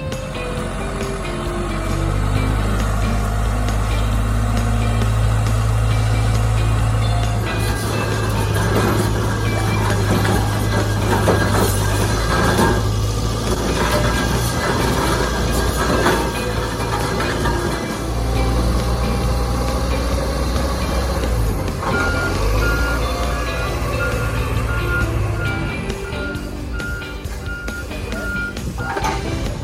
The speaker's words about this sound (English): Well, folks, you can see that we're drilling the base to put in the pillars so that we can start the base of the tower. Nice cold day for it, but the drill doesn't matter. It's going 23 foot deep. It's a 4 foot the 5 foot wide hole.